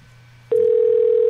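A telephone ringing tone on an outgoing call: after a moment of low hum, a loud, steady single-pitched tone switches on abruptly and holds without a break. No one speaks.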